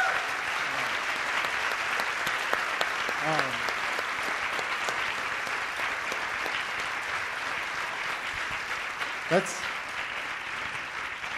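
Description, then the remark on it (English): Sustained audience applause for the panelists at the close of an evening event, a dense, steady wash of many hands clapping at moderate volume, with a few faint voices and brief tonal sounds scattered through it. “That's a top-notch applause right there.”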